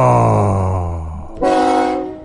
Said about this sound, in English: Oh. Hey, train. Choo-choo, bitches.